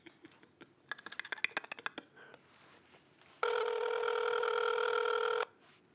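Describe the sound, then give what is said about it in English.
A quick run of about a dozen short keypad beeps as a phone number is dialed for a prank call, followed by a pause and then a single steady, buzzing ring tone that holds for about two seconds. “I'm dialing right now.”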